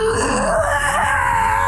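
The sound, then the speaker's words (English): A voice imitates a tinny, hollow, processed robotic scream, like something organic run through a processor: one loud, strained, sustained wail with a wavering pitch and a buzzy, metallic edge, lasting under two seconds with no talking. “It sounds like the scream of something organic running through like a processor that makes it sound sort of tinny and hollow.”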